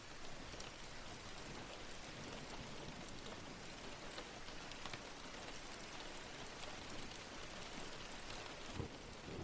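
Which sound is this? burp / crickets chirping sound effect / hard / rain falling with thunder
rain falling with thunder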